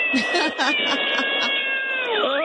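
A cat meows loudly in several quick, short cries, then gives a longer wavering meow at the end, over a steady background tone.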